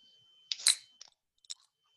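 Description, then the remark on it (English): A drink can cracks open: a sharp snap and a short burst of fizzing hiss, then a few small clicks. No one speaks. “So let's crack it open.”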